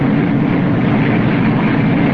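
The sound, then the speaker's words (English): A steady, dense, overwhelming industrial roar from a steel mill basic oxygen furnace (BOF) that is just about to be tapped, loud and unbroken, with a heavy low rumble and broad hissing noise, and no voices over it. “Now, that roar you're hearing, in actuality, I know it doesn't come through just the way it should on radio and through that little loudspeaker of yours, but this roar that you're hearing is absolutely overwhelming.”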